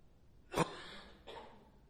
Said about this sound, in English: Sorry, I've got this cough that's like living right here, so I'm going to get rid of it.